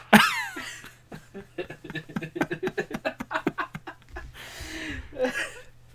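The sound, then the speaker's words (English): A run of rhythmic, chortling laughter gives way to two breathy, hissing blasts of someone blowing their nose hard, each lasting under a second. “You about to blow your nose? Go ahead.”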